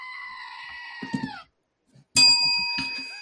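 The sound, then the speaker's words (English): A goat screams in a long, strained, nasal bleat that sags in pitch at the end, then after a brief silence a second, louder scream bursts in abruptly and holds, ringing harshly. “That's a screaming goat for those who don't know.”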